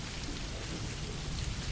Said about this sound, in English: But what a great experience getting soaked in the rain. It's been a long time.